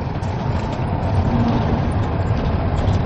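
A steady, low engine rumble fills the space, a constant droning hum of a large vehicle in motion heard from inside, with no voices over it.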